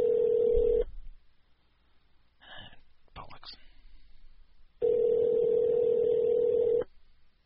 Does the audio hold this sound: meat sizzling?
no